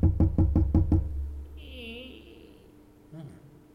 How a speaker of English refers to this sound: Right, Kit Kat Factory, here I come. Knocking on a door.